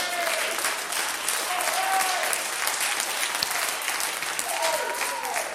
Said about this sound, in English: Get him on a hand clap. Let him know how it is.